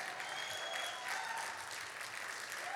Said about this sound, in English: And I'm telling you, if somebody got excited in church today, you should be on your feet clapping your hands right now.